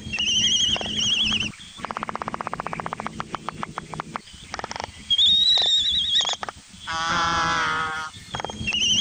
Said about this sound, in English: This is also the best time to hear the various whining and groaning types of calls, as well as the bill clapping, which is part of their impressive courtship displays.